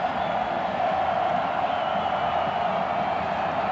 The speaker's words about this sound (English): So the crowd yelling as they have the entire ball game.